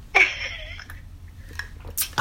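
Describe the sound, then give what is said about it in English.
A short, airy slurp as someone sips water from a cup, followed by soft swallowing and mouth sounds and two breathy exhales at the end. No one speaks. “Let me take a sip of water because I'm probably about to get on your nerve.”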